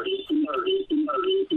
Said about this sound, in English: Uh-oh, now we've got a big echo.